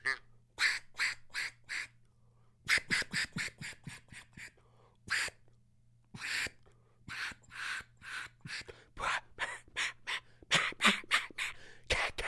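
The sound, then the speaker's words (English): A duck call blown from the back of the call in a long series of short, raspy quacks, some spaced out and some in quick bursts, loud with a faint steady hum beneath. “that's how you operate a duck call, in the back of the call.”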